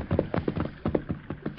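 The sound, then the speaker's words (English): Horses' hooves clip-clop in a quick, steady rhythm on hard ground, each hollow knock distinct, with no voices over the hoofbeats. “We'd better stop and water the horses.”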